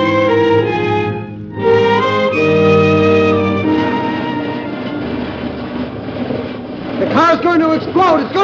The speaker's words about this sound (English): Now, what in the world has happened? Hey, I'm glad you're able to turn that motor off. I didn't turn it off.